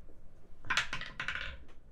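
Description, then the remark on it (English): A die clatters and tumbles through a homemade dice tower in a quick burst of hard, rattling clicks lasting about a second, moderately loud, with no one talking. “We might have actually made a good dice tower.”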